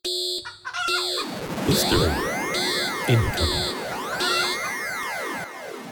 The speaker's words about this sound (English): Sound the uncomfortable history alarm.